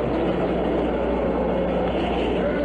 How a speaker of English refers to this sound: 3, 2, 1, 0. All engine running. Liftoff. We have a liftoff. 32 minutes past the hour. Liftoff on Apollo 11.